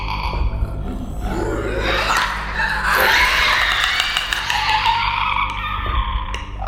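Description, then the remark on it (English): Eerie clicking of fungus-infected zombies from the HBO series The Last of Us: a raspy, guttural throat rattle with rapid clicks, rising into a strained groaning cry midway and sustained for several seconds, with no talking. “Humanity is infected by a fungus that transforms people into violent zombies, and they make this really creepy clicking sound.”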